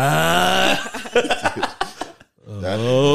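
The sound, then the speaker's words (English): A voice imitates loud snoring: a long, drawn-out throaty rasp, then a burst of choppy, sputtering snorts, a brief pause, and another sustained rumbling snore. “That sound is traumatizing, bro. That's how my dad used to snore.”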